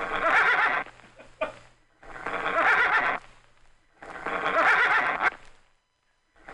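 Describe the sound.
A person imitates a cow moose call, producing three long, loud, nasal bellowing calls in a steady rhythm with short pauses between, alone.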